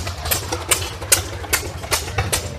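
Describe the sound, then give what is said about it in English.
A small single-cylinder Briggs & Stratton model WM washing machine engine idles, popping in a slow, steady rhythm of sharp bursts over a low mechanical rumble, with no one talking. The Briggs & Stratton Corporation built it as a replacement motor for a Maytag washing machine, and it has a kickstart. “So I had a Briggs & Stratton engine that I repowered it with, which the Briggs & Stratton is a model WM, which stands for washing machine.”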